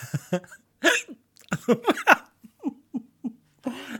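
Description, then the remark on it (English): A loud run of abrupt voiced hiccups, some coming in quick clusters and others spaced apart, ending with a breathy exhale. No one speaks. “Okay, guys, I've been trying to get rid of these hiccups now for about an hour and a half.”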